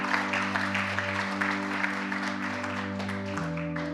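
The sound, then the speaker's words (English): A church audience claps steadily, a dense wash of many hands filling the room, while a sustained organ or keyboard chord holds underneath throughout. “Come on, church. You can clap for that.”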